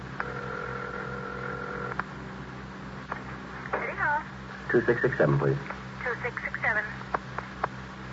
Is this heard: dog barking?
no